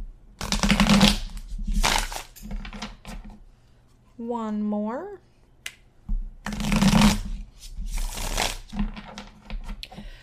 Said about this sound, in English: Today I am using my traditional manga tarot deck. And I'm going to give it 3 shuffles, shuffle it nicely.